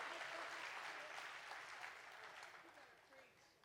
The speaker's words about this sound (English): You better clap right now because I'm going to come after you.